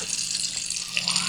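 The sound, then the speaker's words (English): A steady wash of water hisses throughout as ocean waves recede over beach sand, with fine crackling fizz of tiny bubbles popping on top. “And it was just when the waves went over it, it kind of stopped. And then when it went away again, you could hear all these really tiny bubbles.”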